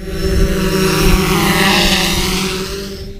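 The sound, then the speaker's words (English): A delivery drone, of the kind Royal Mail plans to use to deliver mail in the UK, buzzes steadily in flight, a loud whine with layered tones that swells slightly as it passes and then eases off. No one speaks. “Royal Mail plans to use drones to deliver mail.”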